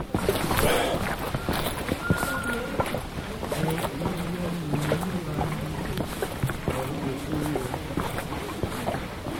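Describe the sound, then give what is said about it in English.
Water sloshes and splashes continuously in carried containers while walking, with faint footstep-like thumps and a man's voice softly singing Hallelujah underneath. “Listen to all the water sloshing.”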